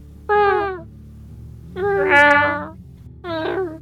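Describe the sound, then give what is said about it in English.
Three distinct cat meows: a short first call, a longer, louder drawn-out meow, then a third cut off at the end. All are clear against a quiet background. “You want me to meow at him too?”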